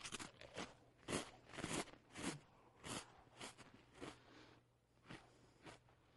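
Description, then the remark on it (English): Someone chews a very cold graham cracker, with about ten loud, dry crunches landing in an uneven rhythm. No one speaks, and the quiet between bites is nearly silent. “So, if I take it here, pop it in my mouth, look what happens.”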